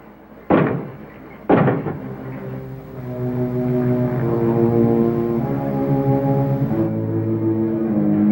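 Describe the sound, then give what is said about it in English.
Two loud, heavy knocks about a second apart from a creature inside a closet in a lab, followed by a swelling, sustained low droning tone that lingers to the end. “Assistant Kurt overhears their conversation, or at least the creature's knocking.”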